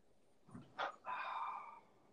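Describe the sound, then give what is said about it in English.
A dog lets out a short, sharp bark followed by a drawn-out, whiny yelp, fairly quiet and heard on its own with no one talking. “Oh, I'm sorry, dog.”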